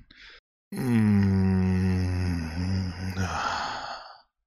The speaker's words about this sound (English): It shoots up from my tailbone through my spine and gives me an overwhelming feeling in the back of my throat, almost like a reverse yawn, and I let out sort of a long and low moan.